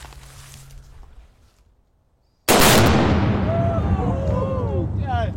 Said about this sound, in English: Explosion time. All right, explosion time. Explosion time. Fire in the hole. Fire in the hole.